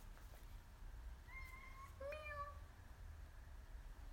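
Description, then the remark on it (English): A female cat that has just arrived meows twice in quick succession, a short steady mew followed by a slightly higher, wavering one, fairly soft against a low background hum with no talking. “The kitty finally came.”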